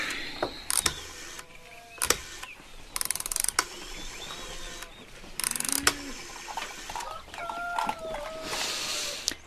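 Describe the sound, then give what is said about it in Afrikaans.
A rotary telephone being dialed to call a neighbour: several short bursts of whirring, ratcheting clicks separated by pauses as the dial spins back, with faint bird-like chirps in the background. “Kom, ons bel bykie die buurvrou.”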